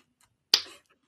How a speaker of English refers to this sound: And by the way, somebody has to start the slow clap.